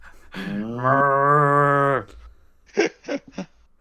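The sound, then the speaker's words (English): On the show What the Foot, a man's voice lets out one drawn-out, low mooing call lasting over a second, imitating a cow, followed by three short, quieter vocal bursts. “You sounded like a cow.”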